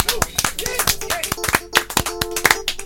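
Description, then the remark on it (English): A short burst of applause: irregular, sharp claps from a small group, loud and steady for about three seconds, with faint voices calling out underneath. “Actually, should we give him a round of applause?”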